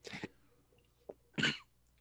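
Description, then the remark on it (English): Three sharp, breathy coughs: a rough double burst, a brief quieter hack, then a final loud explosive cough, with no talking in between. “Cough it out.”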